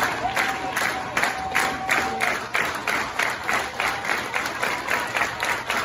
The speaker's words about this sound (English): A lot of clapping. There's a lot of clapping. Yeah. So. Oh, yeah. Tons of clapping. Great crowd today.